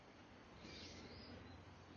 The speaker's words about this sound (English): Beautiful stone path here. We can hear all kinds of birds.